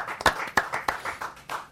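A small group claps in a steady, brisk rhythm, sharp hand strikes repeating about every third of a second, fairly close and moderately loud with no talking over it.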